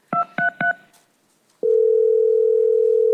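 Three quick keypad tones are dialed for a 911 emergency call, a short pause follows, then a steady telephone ringing tone sounds clearly on the line, continuing unbroken to the end. No one speaks.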